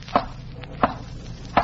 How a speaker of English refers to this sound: Did you hear that? Ah, but of course, madame. Did you not tell him to rap 3 times? That's how Richard always used to knock.